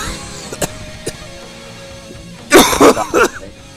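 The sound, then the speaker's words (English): A person who has been sick coughs several times in a quick cluster of harsh bursts, preceded by a couple of small throat clicks, with no talking. “I'm coughing.”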